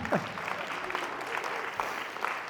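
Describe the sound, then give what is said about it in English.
An audience claps steadily for a couple of seconds, a dense patter of many hands with a few sharper individual claps standing out, and a faint voice briefly audible at the start. “Yeah, give gratitude a clap.”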